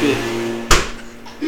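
A door shuts with a single sharp thud that rings out briefly against a steady low electrical hum.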